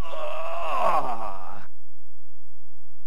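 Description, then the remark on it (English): A voice lets out one long, loud groan like someone bending over to pick something up, its pitch sliding downward over about a second and a half before cutting off into silence. “You know, every time you hear that, remember, that is your groaning for redemption.”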